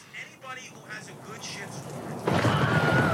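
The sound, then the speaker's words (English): After a couple of seconds of faint voices and murmuring, an audience bursts into loud, dense applause, a steady crackling wash of clapping that carries on to the end. “People are applauding.”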